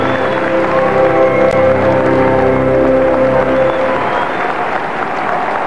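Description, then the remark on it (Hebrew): An audience applauds steadily for all the female contestants, the clapping swelling into a dense, loud wash over the last couple of seconds while sustained music plays underneath. “ומחיאות כפיים לכל הבנות, מגיע להן.”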